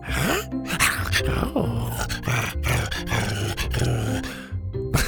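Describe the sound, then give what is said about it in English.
A playful dinosaur growl as the dinosaur peeks out from behind a plant: a loud run of rumbling growls, grunts and groaning moans rising and falling in short bursts for about five seconds, with no talking. “Buck growled playfully and peeked out from behind the plant before trying to hide his big head again.”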